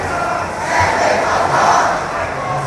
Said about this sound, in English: They are shouting, "Free Hong Kong! Stand for your freedom!" And this is what happens when people care about ideas and care about their liberties.